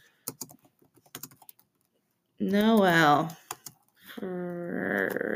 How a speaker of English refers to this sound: Don't look at my typing because it probably doesn't look great.